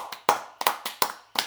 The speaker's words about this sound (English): I don't know what he's clapping about, but I joined him.